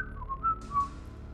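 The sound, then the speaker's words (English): Several people whistle at once, thin wavering tones around one pitch that overlap and slide unevenly for about a second, fairly quiet, with low rumbling noise underneath. “Everybody whistle?”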